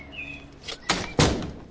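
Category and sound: household object, door opening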